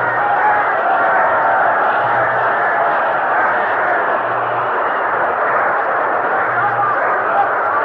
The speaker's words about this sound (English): Yankee Stadium, a tremendously excited crowd watching the New York Giants lead the Pittsburgh Steelers by a score of 9-0.